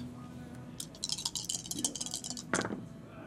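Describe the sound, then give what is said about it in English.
A rapid flurry of hard clicks and clatters as three dice are rolled during a board game, tumbling and knocking together, ending in a sharper knock as they settle, over a low steady hum. “I now must roll 3 dice.”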